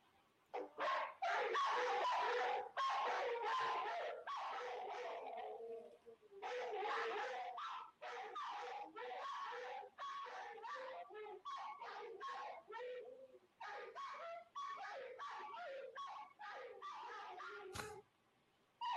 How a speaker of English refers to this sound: I'm gonna watch the volume here because I remember when the dogs were barking, it was really loud.